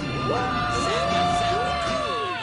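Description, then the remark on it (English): A man screams and whoops excitedly for a couple of seconds, his loud voice rising and falling in pitch, continuous, with a hint of crowd-like cheering around him. “And he's screaming.”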